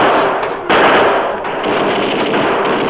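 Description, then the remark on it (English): Loud, dense bursts of rapid machine-gun fire from police Tommy guns shooting through a door, with crooks firing back, merge into a continuous crackling roar, with a sharp jolt of extra intensity partway through and no voices. “The crook's gunfire was ineffectual against the rain of fire that poured from the police Tommy guns.”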